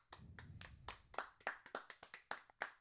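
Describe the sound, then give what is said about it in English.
A tepid round of applause: a dozen or so sparse, uneven hand claps, sharp and moderately loud, with a soft low rumble underneath at the start and no cheering. “Tepid, from the unenthusiastic round of applause.”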